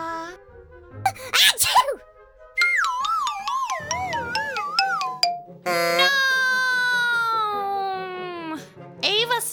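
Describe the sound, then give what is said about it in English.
A little girl gives a loud, sudden sneeze near the start, followed by long wavering, wailing vocal tones that rise and fall like crying, with another brief burst at the end. “Her sneeze was so big it knocked my dog treat out of her hand, where it broke into crumbles to the floor.”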